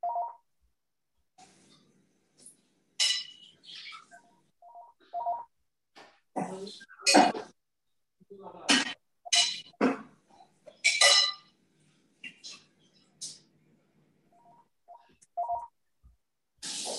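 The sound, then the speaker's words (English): An electronic doorbell chimes in short tonal beeps that repeat on and off, interspersed with louder, sharp bursts of noise that sound like a dog barking. “I'm sorry, someone's ringing my doorbell.”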